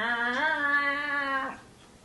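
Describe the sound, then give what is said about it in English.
A single long, drawn-out cat meow, fairly loud, holding a steady pitch for about a second and a half before cutting off into quiet. “Oh, no, the cat's back over here.”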